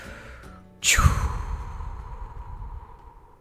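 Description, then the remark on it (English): A single deep, heavy breath, a sudden rushing exhale that slowly trails off, with no one talking. “And deep breathing, ready, go.”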